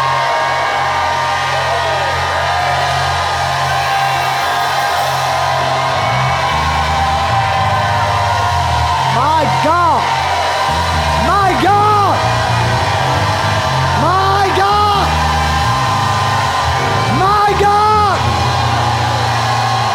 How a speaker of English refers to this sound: If you believe that these 8 days will change your life like you have never seen it changed in your life, lift your hands and shout like you've never shouted in your life.